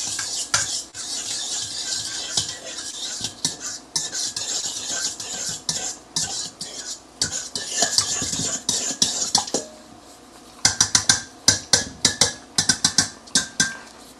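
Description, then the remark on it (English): A fork scrapes and clinks steadily against a bowl as ingredients are stirred together, a continuous scratchy mixing sound that ends in a run of sharp, rhythmic taps. “And now we are going to get our fork and just kind of combine them that way.”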